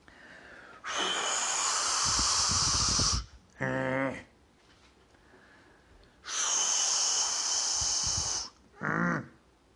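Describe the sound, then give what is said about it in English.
A voice imitates a wolf huffing and blowing at a brick house: two long, loud, breathy blasts of hissing air, each followed by a short rattling, snorting inhale, with no talking. “And he came around to where the wolf was still blowing at the brick, ineffectually.”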